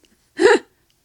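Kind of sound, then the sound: human body sound, burp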